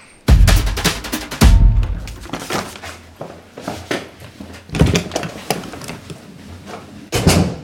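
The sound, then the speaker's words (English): A museum door opens with several heavy clunks and thuds, the latch and wood knocking at irregular intervals, followed by the muffled rustle of people walking in. “And so I quite like this door. Let's go in.”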